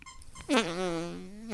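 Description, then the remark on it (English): A single drawn-out voiced noise, fairly loud, as someone vocally imitates a man's stomach growl that sounded like a fart: a quick rising burst that drops into a sustained, wavering low rumble. “my dad's stomach growled in a way that could, that it sounded like one of those farts.”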